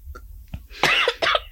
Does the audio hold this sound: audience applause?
no